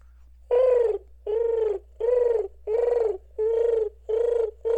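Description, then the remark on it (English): A person imitates a mourning dove's cooing with seven steady, evenly spaced hooting coos, each about half a second long, fairly loud, with no talking. “That was a mourning dove, dude.”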